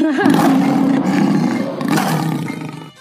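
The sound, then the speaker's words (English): A loud roar, like a big cat's, rumbling continuously for about three seconds with a growling, harmonic tone before tapering off at the end. No voices accompany it. “Without further ado, we roar together.”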